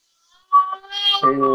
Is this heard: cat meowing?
yes